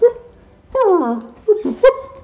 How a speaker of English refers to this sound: Oh, the studio dog is at it again.